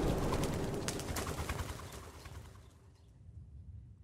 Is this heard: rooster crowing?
yes